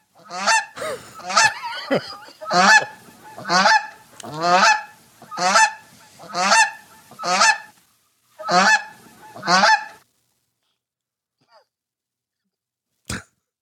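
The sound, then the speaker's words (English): A goose honks loudly and repeatedly, about nine harsh calls in a steady rhythm, then silence with a faint click near the end. “Well, let's go back and see what the goose is doing.”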